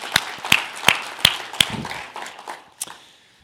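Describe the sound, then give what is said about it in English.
An audience applauds: a few loud, sharp claps stand out at a steady beat over a scattered patter of many hands, which thins and fades away within a few seconds. “So can we just give a round of applause for what God is doing in our midst lately, right?”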